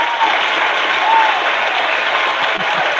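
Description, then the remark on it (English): Steady, dense audience applause for the guests of a panel fills the whole stretch, a broad even wash of many hands clapping at a constant loud level with no voices standing out. “So we're going to give our applause to our guests.”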